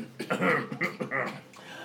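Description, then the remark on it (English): A person lets out a short string of three or four rough, throaty coughs, fairly loud, the bursts coming in quick succession before trailing off into a rasp. “I swallow some and I cough.”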